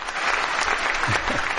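Steady applause for the winner of a Constantine giveaway bag on an AfterBuzz Constantine after show, a dense even patter of clapping from a group of people that stays loud throughout with no voices standing out.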